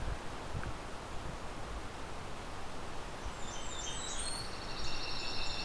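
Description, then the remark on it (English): An ovenbird sings partway through, a run of repeated high chanting phrases that grows a little louder over a steady background of rustling, breezy woodland noise. “Well, that's closer. There's our ovenbird.”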